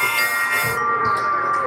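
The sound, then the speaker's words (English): A harmonica solo plays steady, reedy sustained notes with a bright, buzzy edge, fairly loud, holding a tone for nearly two seconds with no voices. “Now a harmonica solo for my daughter.”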